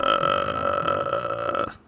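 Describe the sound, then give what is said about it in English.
A person makes a sustained, creaky croaking rattle in the throat, a loud vocal imitation of the ghostly death rattle from the movie The Grudge, lasting under two seconds before cutting off. “No, that's the Grudge noise.”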